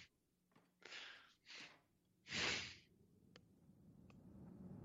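Three raspy, breathy snores in a row, the third one the loudest and longest, followed by a low steady background hum with no talking.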